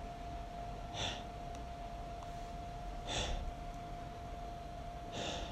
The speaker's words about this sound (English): I began to gasp.